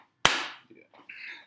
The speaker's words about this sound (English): Clap sync.